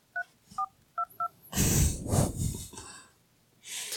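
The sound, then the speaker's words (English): Four short, evenly pitched phone keypad tones beep in quick succession as a zip code is entered on an automated attorney-finding phone line, followed by a loud burst of breathy, snorting noise. “Please enter the zip code where you need an attorney.”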